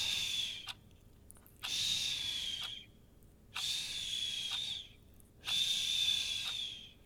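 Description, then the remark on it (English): Steady nasal breathing of a woman, with a thin, high whistle riding on each breath, four long breaths in a slow rhythm with brief quiet gaps between them; no talking. “And when she's breathing through her nose, it makes a whistle.”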